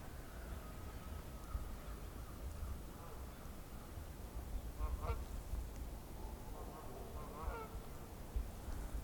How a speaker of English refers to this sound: Here we go. So fly over about 20 Canada geese.